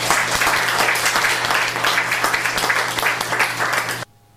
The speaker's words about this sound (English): Let's give another hand.